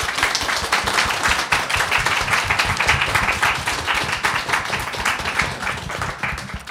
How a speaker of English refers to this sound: Can we have a huge round of applause, please?